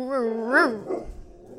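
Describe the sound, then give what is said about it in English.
A dog, upset at a window blind being pulled down, lets out one drawn-out, whiny bark that rises in pitch and then trails off, followed by a brief low rumble and quiet. “Podcasting dog problems.”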